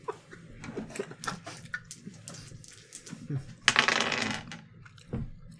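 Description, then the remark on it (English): Percentile dice clatter across a tabletop: a scatter of sharp plastic clicks, then a dense rattling burst as they tumble and settle, with faint murmuring voices in the background. “Roll percentile dice.”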